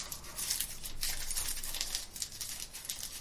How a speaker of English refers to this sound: You hear a lot of crinkling and rustling.